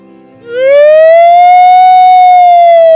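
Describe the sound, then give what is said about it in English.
A person imitates a fire station siren with their voice: one loud, sustained wail that swoops upward from a low hum and holds a steady high pitch to the end, with no talking. “That was a good siren, somebody.”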